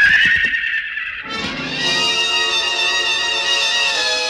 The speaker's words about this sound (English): The stallion reared high, pawed at the gathering darkness. His jowls flecked with foam.